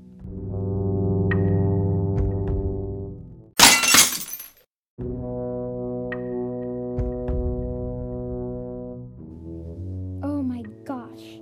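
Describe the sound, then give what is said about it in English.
A dropped drinking glass hits the floor and shatters in one sharp, bright crash lasting under a second. Sustained low musical tones play before it, then return after a brief silence. “She dropped the glass.”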